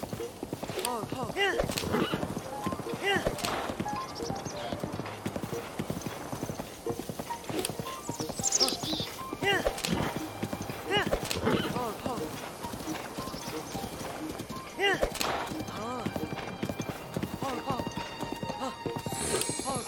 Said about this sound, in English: The horse jumps majestically over a boulder. And we continue following the road.